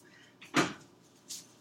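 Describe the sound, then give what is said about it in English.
A refrigerator door bumps open with a soft clatter as bread is put back in the fridge, then shuts with a solid thud, followed a moment later by a short, airy higher-pitched swish. No one speaks. “Alright, bread is going back in the fridge.”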